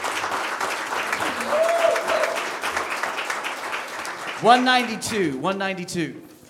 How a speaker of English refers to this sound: Are you looking forward to seeing Jesus Christ someday? Yeah. Let's give him a clap.